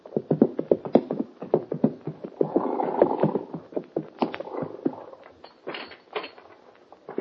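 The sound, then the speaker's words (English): Horses' hooves clip-clop in a quick, uneven rhythm as Hoppy and the kid ride up to the door of Mort Robertson's ranch house on Clear Creek, the beats loud before slowing and thinning out toward the end. No one speaks. “A few minutes after the meeting on the plane, that Hoppy and the kid ride up to the door of Mort Robertson's ranch house on Clear Creek.”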